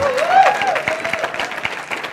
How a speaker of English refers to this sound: You probably ought to give him a round of applause and show him how much you love him. Go ahead.